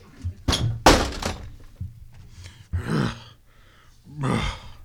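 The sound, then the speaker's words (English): An office door bangs open with a couple of sharp, heavy thuds as a 400-pound man bursts in, followed by a few breathy, grunting bursts and shuffling sounds. “My door burst open, and there he stood, all 6 foot, 400 pounds of him.”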